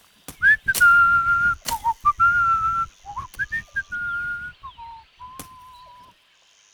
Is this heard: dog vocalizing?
no